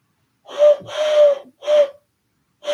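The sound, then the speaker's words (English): A human voice imitates a wood pigeon calling from a little further off, softly cooing breathy, low hoots in a short-long-short pattern before a fourth note begins. No one speaks. “That's your wood pigeon, right? Yeah, it's your wood pigeon. Now, let me just do him a little bit further off.”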